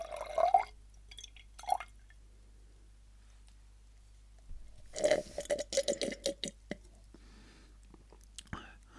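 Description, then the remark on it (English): Water being poured into a glass, with a couple of brief drips early on, then a few seconds of bubbly, glugging pour at a quiet level. “Maybe I'll have a glass of water.”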